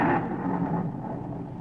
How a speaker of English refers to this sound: Doggone, it's thundering, too.